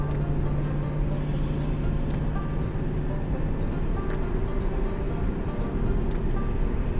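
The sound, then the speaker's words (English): A steady, dense low rumble of road and engine noise inside a moving Mustang fitted with lowering springs and a catback exhaust, with a faint hum running underneath and no pauses, as heard from the cabin while driving. “New Car! First Ride In with the Mustang!”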